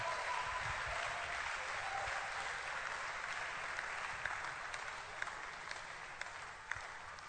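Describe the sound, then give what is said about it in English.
An audience claps unto Jesus in praise, steadily and loudly for several seconds, a dense, continuous wash of applause with a few sharper claps standing out near the end. “Oh, somebody shout and clap unto Jesus.”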